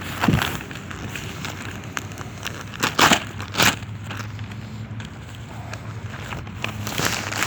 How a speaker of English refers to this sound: I got some paper, so I'm putting paper down to get this booze off my fucking tarp.